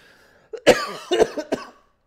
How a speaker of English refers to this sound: And now I'm coughing into my microphone. I was like, please don't choke.